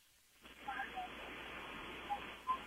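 A call-in caller's telephone line from Mississippi cuts to a steady band of muffled hiss with no voice on it, broken by a few short electronic blips, like a call dropping out.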